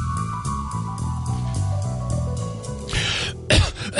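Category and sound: human body sound, fake cough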